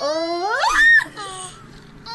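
A turtle gives a loud, squeaky call, a rising, whining squeal like air squeezed from a stretched balloon neck, followed by a shorter, softer squeak.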